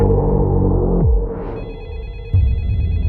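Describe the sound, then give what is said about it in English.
A mobile phone rings loudly, its electronic ringtone sliding down, then up, before settling into a rapid warbling trill over a low throbbing hum. “Hey, baby, your phone is ringing.”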